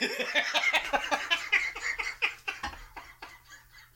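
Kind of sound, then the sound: bird, duck quacking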